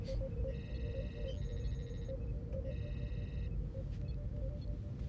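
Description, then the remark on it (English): A Star Trek-style communicator chirp as a yeoman contacts the captain for the morning brief: a trilling electronic signal of high, warbling tones that sounds in two bursts over a steady, loud low rumble, with no voices. “it's usually a few seconds after the replicator has created your tea, or it's a few seconds after the first touch of the cup to your lips, where you hear the chirping sound of your yeoman contacting you for the morning brief.”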